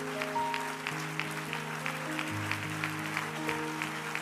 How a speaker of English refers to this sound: Why don't you clap your hands to the Lord one more time and let's ask God to have his way.